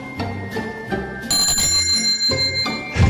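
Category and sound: signal or alarm, bicycle bell ringing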